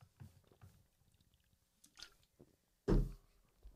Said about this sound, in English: I'll take a sip right now. Okay, take it. And me too.